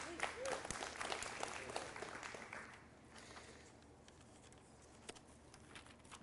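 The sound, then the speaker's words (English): An audience breaks into dense, loud applause with a few voices calling out, then the clapping thins after a couple of seconds into quieter, scattered claps. “We can clap for that.”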